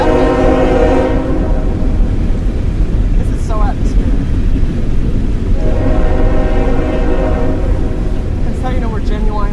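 A train horn sounds in long, steady harmonic blasts, once at the start and again later, over a loud continuous rumble of rolling rail cars, with a few faint chirps in between.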